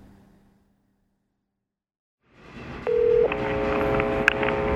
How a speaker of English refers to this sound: Hi, I'm just hearing a weird buzz in the phone. I suppose you don't hear that. I do, and it's very loud.